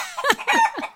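A chicken clucking sound effect: a quick burst of three or four sharp, nasal squawks that slide downward in pitch, loud, with no other sounds around it.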